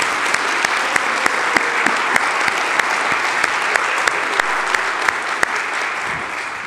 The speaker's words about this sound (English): Which probably needs another round of applause.